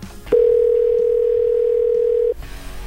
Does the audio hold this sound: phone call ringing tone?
yes